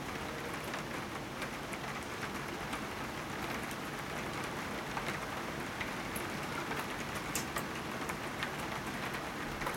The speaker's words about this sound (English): Raindrops are a curious thing.